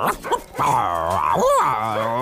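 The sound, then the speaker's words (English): A dog named Pyla, who looks a bit like a lion, gives a couple of short yips, then a long, drawn-out whining whimper that wavers up and down in pitch, loud and alone with no talking. “It's my dog, Pyla.”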